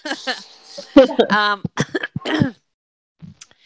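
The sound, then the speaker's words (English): A loud run of harsh coughs and throat-clearing, several strained bursts with raspy, voiced gasps between them, then a brief quiet pause and a faint final rasp. “I'm choking.”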